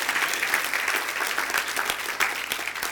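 A church audience claps together as a clap offering to God, in a dense, steady wash of applause, many hands overlapping into a bright, sustained patter with a few sharper claps standing out.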